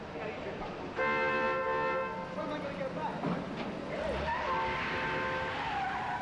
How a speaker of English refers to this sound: The movie is chock full of wonderful scenes, and the most famous is a spectacular car chase with Hackman racing to catch a hijacked elevated city train, one of the scariest and most thrilling car chases ever.